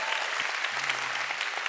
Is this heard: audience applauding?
yes